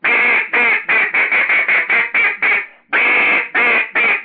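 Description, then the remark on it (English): A duck call blows a loud series of raspy quacks, about ten quick notes in a steady run, then a brief pause before a few longer, drawn-out quacks. “And after that would come the ducker part, and the duck part, which would be like this, just.”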